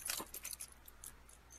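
Keys jangle in a quick burst of bright metallic clinks, strongest at the start and then thinning into a few lighter, scattered jingles against quiet background hum.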